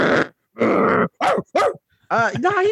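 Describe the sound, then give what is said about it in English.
A person vocally imitates a growling dog, making a series of rough growling and barking noises in several short, loud bursts. “No, fucking growling, dog, like, I had to learn the dog's language.”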